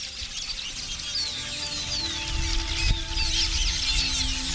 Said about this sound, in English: A colony of masked weaver birds that have built an elaborate hanging city of grass nests in the treetops.